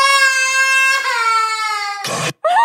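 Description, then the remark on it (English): A baby throwing a tantrum over not being allowed to eat Miller's dog food cries in a long, high-pitched sustained wail, breaks into a harsh, strained shriek, pauses briefly, then starts another rising cry. No one speaks over it. “Are we sad because we can't eat Miller's dog food?”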